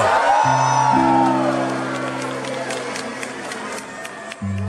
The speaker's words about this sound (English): He flips the switch, everything, all the lights of the building and the tree, and the crowd is like, whoa!